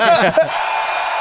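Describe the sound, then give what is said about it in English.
A crowd of thousands at a Microsoft gaming keynote cheers loudly, with a burst of overlapping shouts and whoops at the start that settles into a steady, dense roar of applause and voices. “Everyone's cheering.”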